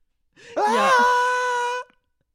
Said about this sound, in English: and you hear that, boy, is it painful, classic movie scream.